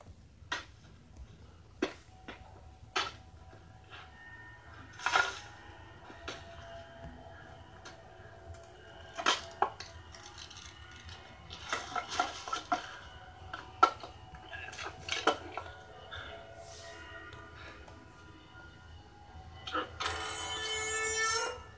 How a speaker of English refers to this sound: It's a camera shutter sound. But it's, you know that sound, like horror fans know that sound everywhere.